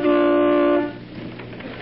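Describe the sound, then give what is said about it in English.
A single sustained car horn blast, honked in the driveway of Bing Crosby's house, loud, holding a steady pitched tone for under a second before cutting off into quieter background noise. “Hey, who's that honking in C sharp?”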